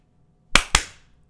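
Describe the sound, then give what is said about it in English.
Two loud, sharp hand claps in quick succession, each a crisp smack with a short ringing tail, and no talking around them. “Give me a strong clap.”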